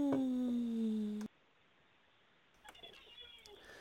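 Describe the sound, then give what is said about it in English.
A brown and white pit bull, heard over a phone call, lets out a single drawn-out, high whine that slides slightly downward in pitch for about a second, then cuts off abruptly into near silence and faint background noise. “Okay, yeah, I can't hear that anymore. Either you let the dog out, either you let the dog out, or you hang up the phone.”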